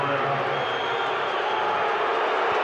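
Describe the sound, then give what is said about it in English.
A large basketball arena crowd roars steadily with cheering and a dense wash of voices, loud and sustained throughout with no pauses. “Crowd really into it now.”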